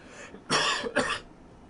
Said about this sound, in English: Not a COVID cough, a cigar cough.